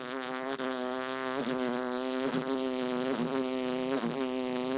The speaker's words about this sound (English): And my parents had bought me a didgeridoo many years ago, and that was easy to play. You just pick it up and go.